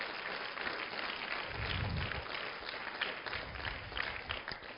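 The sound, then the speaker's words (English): A crowd of people gives a hand clap for the Lord, a steady, dense wash of clapping lasting several seconds, even in level, with no voices standing out. “Give the Lord a hand clap if you understand what I'm saying.”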